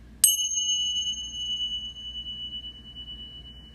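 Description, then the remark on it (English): A single bell is struck once, giving a bright, clear tone with sharp attack that rings out and slowly fades over several seconds, heard alone against a quiet low hum. “Center ourselves, ring the bell, and welcome in the energy of this dynamic as well as spirit.”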